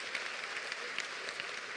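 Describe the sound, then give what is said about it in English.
An audience claps hands together in praise as the youngest mother comes forward, steady, sustained applause, a dense wash of many overlapping claps with no pauses and no voices standing out. “Let's get Lord a hand clap.”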